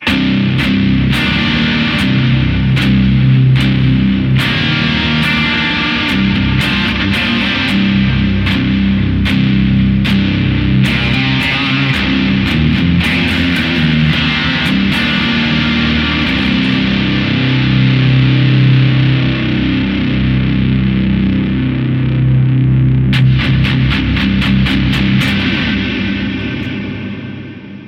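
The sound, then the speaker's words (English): A heavily overdriven electric guitar played through stacked LRC Little River custom pedals, with the halo and the LRC black hole on, plays loud, sustained chords and low riffs with a thick, saturated tone and a washy ambient tail, with sharp pick attacks throughout and no voices. “Did a little adjusting just to make it cut through while having the halo and the LRC black hole on.”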